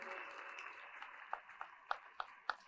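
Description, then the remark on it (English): Audience applause for girls as they take their seats, a soft wash of many hands clapping that thins out into a handful of separate, sharper claps spaced about a beat apart near the end; fairly faint. “But do you know, help me clap for them as they take their seats.”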